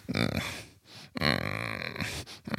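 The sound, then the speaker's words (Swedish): A voice imitates a low, grumbling growl, a Swedish 'knorr' (a grumble lower in pitch than a whine), in a few rough, throaty bursts, strong and sustained with brief breaks between them, with no actual words spoken. “Knorr är lite mer.”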